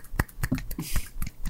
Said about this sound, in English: And both of them are just snapping right now.